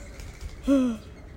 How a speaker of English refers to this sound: Birds.